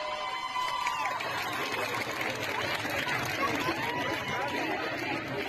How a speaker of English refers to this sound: Over the past few days, we have seen these scenes of massive crowds of women protesting in the street, marching, chanting, yelling at police, and breaking the laws around their hair.